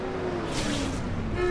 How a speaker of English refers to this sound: Just listen to the sound of traffic on this busy road in the city of Rawalpindi, and you get the idea. Like many cities, there are a lot of cars here, and in many places, not nearly enough space to park them all.